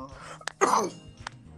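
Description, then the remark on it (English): A single harsh cough bursts out midway, bracketed by a couple of short throaty clicks, with faint background noise and no one talking. “Was that a bark? That was a cough, man.”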